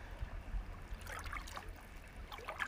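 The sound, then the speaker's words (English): A boat moves slowly past on a lake, its low, steady engine rumble underneath gentle lapping and trickling water, with no voices. “So now we have a boat moving by slowly.”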